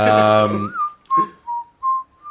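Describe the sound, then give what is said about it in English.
A short, eerie tune is whistled, a handful of sliding, wavering notes with small gaps, right after a brief burst of voice at the start. “Hey, whistle something creepy, I guess.”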